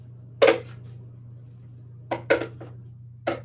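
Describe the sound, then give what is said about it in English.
A utensil scrapes and knocks against the inside of a blender jar in a few short, sharp bursts, one near the start and a cluster toward the end, over a steady low hum. “All right, so I'm gonna actually just scrape the sides down a little bit to make this easier to blend.”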